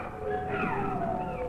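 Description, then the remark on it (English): Wolves that have come closer yip and bark in high, wavering tones that slide up and down and overlap, over a steady background hum, with no speech. “And then they turned to yips and barks, as if the wolves were talking to each other as they watched us.”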